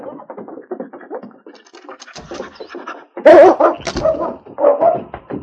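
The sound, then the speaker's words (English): The dog King, having caught the express agent's scent from a hat and been told to find him, whimpers and sniffs eagerly, then breaks into a burst of loud, sharp barks mixed with excited whines, the yelps rising and falling in quick succession. “Sergeant Preston held out the hat to the intelligent dog. King caught the express agent's scent from the hat.”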